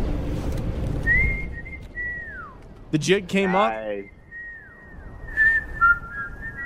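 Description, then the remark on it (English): A man whistles the Andy Griffith theme tune in clear, steady melodic notes, pausing briefly while someone speaks a short phrase, then resuming the whistled melody. “And then he whistles Andy Griffith.”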